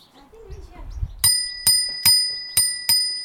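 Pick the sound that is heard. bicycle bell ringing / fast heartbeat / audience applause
bicycle bell ringing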